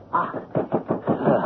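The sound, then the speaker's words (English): A rapid series of heavy thuds, a fist pounding on a locked, shut door, about five or six blows in quick, uneven succession. “If you don't bring out that sugar, I'll break the door down.”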